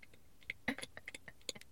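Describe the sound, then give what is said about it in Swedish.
A woman makes a quick, irregular series of about ten soft, sharp tongue clicks against the palate while pressing on her ear, with one louder, fuller click partway through and no talking. “sitter och trycker i sitt öra samtidigt som hon gör ett klickande ljud med tungan i gommen.”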